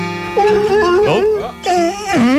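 A radio station's dog howls along with music played in the studio: two long, wavering, mid-pitched howls that rise and slide, with a short break between them, loud over the steady music underneath.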